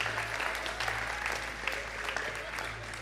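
An audience claps steadily, many hands producing a dense, continuous patter of applause at moderate loudness for a few seconds, with a low steady hum underneath.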